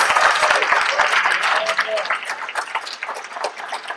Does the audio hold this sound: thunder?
no